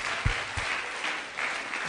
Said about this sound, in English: Clap for yourself again. Come on.